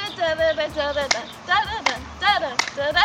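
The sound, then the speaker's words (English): Sharp snaps and claps land in a steady rhythm, about one every three-quarters of a second, over a continuous sung or chanted voice, in a hand jive routine made for Eisenhower High School (Ike) to show school pride. “They even have one of those hand jive routines just for the school where you like snap and clap your hands and stuff to show your school pride.”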